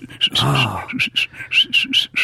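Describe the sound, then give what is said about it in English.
A rapid string of short, shrill tooth whistles, about eight quick chirping bursts, with a brief low voiced sound mixed in near the start. “I can do the tooth whistle, which is...”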